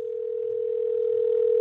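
A steady, unbroken telephone dial tone hums at one pitch for a second and a half, loud, then cuts off abruptly as the line connects for a phone call. No voices are heard.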